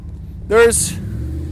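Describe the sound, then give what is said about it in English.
A Durango SUV engine, just repaired, idles with a steady, low rumble throughout. Partway through, a brief voice-like sound and a short burst of hiss rise over it. “Yeah, we haven't caught fire yet, ladies and gentlemen. It looks like the Durango might live to see another day.”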